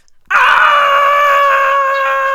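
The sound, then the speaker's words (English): Frightened people scream, a loud, high, sustained cry that bursts in suddenly and holds a steady pitch for about two seconds, with no talking. “Well, the robbers were so scared, they jumped up and ran screaming out of the house.”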